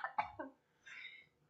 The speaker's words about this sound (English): You have to sound angry when you say his name. Adam Weishaupt. That's going to make me cough every time I do it, though. Sorry.